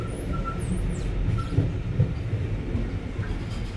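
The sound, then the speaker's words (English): A train rumbles steadily as it pulls into a station in a historic city, with heavy low-end noise, faint clanks and high squealing tones from the wheels or brakes as it slows. “And as you can hear, we're pulling into the station.”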